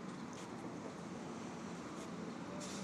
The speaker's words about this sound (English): Looks like the bus is about to arrive.